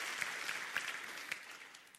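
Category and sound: crowd, audience cheering and applauding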